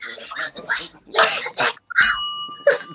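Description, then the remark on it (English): A single bright bell strike rings out with a clear, high, sustained metallic tone that hangs for nearly a second, following a run of short voice and throat sounds. “Ring the bell.”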